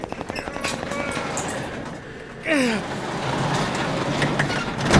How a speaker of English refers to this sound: We have to lift this garage door together. There's too much snow here, okay? 3, 2, 1, lift.